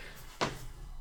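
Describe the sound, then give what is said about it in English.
A single short creak, like wood or furniture shifting under a person's weight, brief and fairly loud against quiet, with no talking. “You creaked.”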